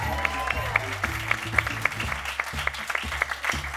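An audience claps steadily, many hands blending into a dense patter with sharper individual claps standing out throughout, over a low steady hum.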